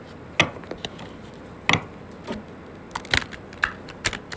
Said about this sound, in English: I'm going to do one last shuffle and break the deck.